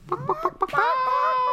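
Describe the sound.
A voice imitates a chicken, crowing like Peter Pan: four quick, evenly spaced clucks followed by a long, drawn-out squawk, loud with no other talking.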